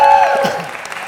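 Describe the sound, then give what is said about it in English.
A church audience at a service erupts in loud, sustained applause mixed with scattered shouts and cheers, a dense wash of clapping that stays strong and steady throughout. “Come on, give him a shout.”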